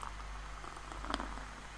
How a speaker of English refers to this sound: Oh, I've got a better head on this one this time around. I did a really hard pour. I've got a nice... This one's got a nice head on it.